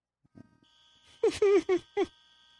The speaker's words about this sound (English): Oh, it's the shot clock. It's the shot clock, dude. They're buzzing you off. It's like the gong show. You're getting hooked off.